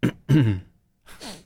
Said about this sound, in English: It's a throat clear and a sniff.